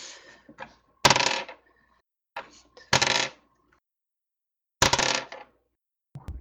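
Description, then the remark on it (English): Dice are rolled during a tabletop role-playing game to work out poison damage, clattering across a hard surface in three loud bursts, each a sharp hit followed by a brief rattling tumble, with a few smaller clicks in between and no talking. “Okay, so give me a moment while I roll these.”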